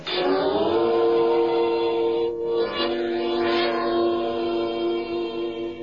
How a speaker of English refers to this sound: Tonight's file opens in a railroad station in a large eastern city. It is early evening